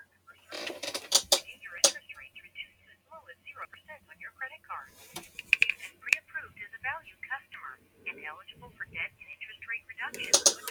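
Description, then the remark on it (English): A telephone call is answered, with a thin, band-limited voice talking over the line, broken up by a few loud crackling bursts of handling noise at the start, middle and end. “the phone has been answered twice on this podcast”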